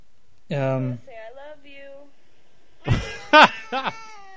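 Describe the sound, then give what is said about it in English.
A cat meows several times in short, wavering calls, a longer drawn-out cry followed by a louder burst of quick, higher meows, sounding slightly tinny as it plays from a Cat Finds video being watched. “Sorry, no, you bored me, so I started watching Cat Finds.”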